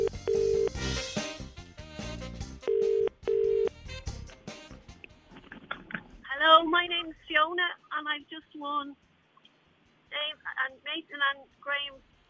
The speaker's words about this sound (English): So if your name begins with the letter F, we might be giving you a call right now on private number and you just have to answer the phone with the phrase that we gave you.